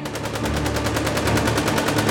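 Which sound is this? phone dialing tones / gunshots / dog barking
gunshots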